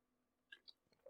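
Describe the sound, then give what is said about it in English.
A few quiet wet mouth sounds, like small sips and lip smacks from a drink, spaced over a brief moment with no talking. “Let me get a sip right quick.”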